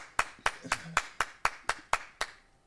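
A single person claps about ten times in a steady, fairly quick rhythm, each clap a sharp, crisp slap of the hands at an even loudness, with a faint murmur briefly underneath.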